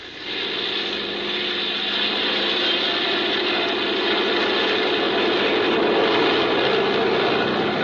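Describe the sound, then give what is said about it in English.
A small propeller plane's engine roars steadily, holding a loud, sustained drone with a slight rise in intensity as it powers up for takeoff. “Well, I guess we can take off. Here we go.”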